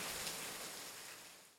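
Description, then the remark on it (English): A dense, steady wash of hard rain hisses continuously across the whole range, unbroken by voices, then tapers off softly in the final moments. “You're listening to Hard Rain.”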